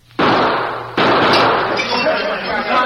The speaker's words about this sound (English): Everything was going fine. I'd made the barkeep hand over the cash. Then I threw some shots at the lamps to cover my getaway.